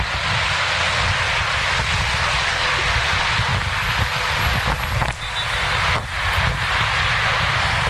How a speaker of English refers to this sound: right, so some blank rounds of gunfire pinging off the high-rises here in downtown Miami. So that's just totally okay, I guess. Yes, yeah, flying Black Hawks, low-level altitude, shooting machine gun blanks?